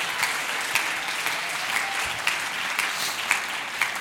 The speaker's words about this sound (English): Come on, clap your hands.